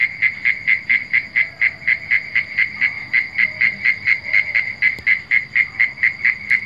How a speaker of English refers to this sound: We're listening to a recording that sounds very like frogs